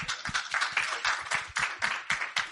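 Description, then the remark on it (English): An audience claps steadily for a couple of seconds, a dense patter of many hands with sharp, bright individual claps standing out above the crowd. “get a clap again?”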